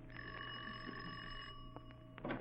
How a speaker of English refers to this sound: Ring the bell, Patsy.